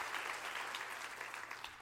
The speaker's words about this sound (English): Clap your hands and rejoice at the word of the Lord today. Amen.